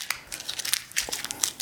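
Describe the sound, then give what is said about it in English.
Crisp crinkling of a $100 paper banknote being crumpled up in the hand, a rapid series of sharp rustles and crackles over a couple of seconds, with no talking. “I just crumpled it up.”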